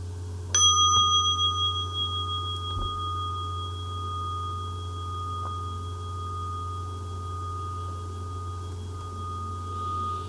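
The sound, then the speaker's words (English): A single mindfulness bell is struck once, ringing out with a bright, clear tone that sustains and slowly fades over several seconds against a low steady hum, with no talking. “So I'm going to invite the bell a little bit to let us consider what was just said.”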